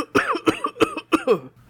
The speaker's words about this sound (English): All right, and for one final demonstration, what if I'm coughing?